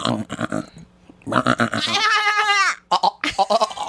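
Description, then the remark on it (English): A person imitates a goat with a loud, wavering nasal bleat lasting under a second, surrounded by brief bursts of talk and laughter. “taught me how to do the goat.”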